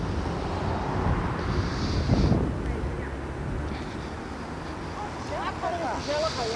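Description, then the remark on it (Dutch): A very busy street with many cars and cyclists hums with steady low traffic rumble and wind buffeting. A vehicle swells past around the middle, with brief higher chirps and squeaks near the end. “Ik ben nu op een heel druk stukje. Misschien hoor je het wel. Veel auto's, veel fietsers.”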